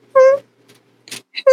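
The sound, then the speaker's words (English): A voice imitates a kitten's tiny snore: two short, high squeaky tones separated by a soft breathy hiss and a brief chirp, fairly quiet. “I must point out that the kitten on the left is currently snoring very, very quietly.”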